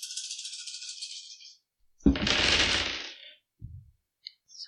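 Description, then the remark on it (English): A soft clattering rattle fades out, then a sharp burst of many dice tumbling and clacking together, followed by a couple of small knocks and faint clicks as they settle. “So many dice.”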